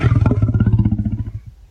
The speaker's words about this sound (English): It's a hippo. It's not a hippo. It's a lion.